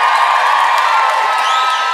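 A crowd cheers and whoops loudly with clapping mixed in, a dense, steady roar of voices sustained for the full two seconds with no talking over it.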